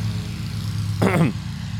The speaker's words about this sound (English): Can you believe this lawnmower, dude?